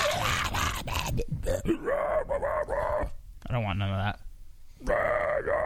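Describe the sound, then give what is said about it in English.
A single voice lets out loud, gritty metal-band-style screams and growls in several harsh bursts, broken by a short, wavering sung note before the rasping screams return. “Apparently that's how people actually scream, like in bands, like metal bands.”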